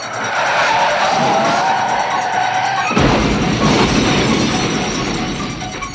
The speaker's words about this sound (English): You get slammed into by a police car and pinned between a van, all because you had to dress like the blonde version of Michael Myers.